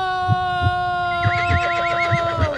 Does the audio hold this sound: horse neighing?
yes